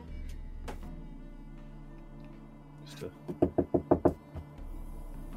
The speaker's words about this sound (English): Well, there will be a knock at her door from Carl.